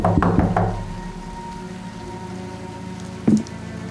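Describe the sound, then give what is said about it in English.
A quick run of about four solid knocks on the door of the house next door in a residential area, fairly loud, then a pause before one more knock, over a steady soft hiss like light rain. “Okay, I'm going to walk next door and I'm going to knock.”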